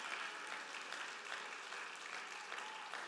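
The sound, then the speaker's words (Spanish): A church audience claps steadily and continuously in praise of God, a dense, even wash of many hands with no pauses, sustained at a full, constant level for the whole stretch. “Dale palmas a mi rey con todo el corazón.”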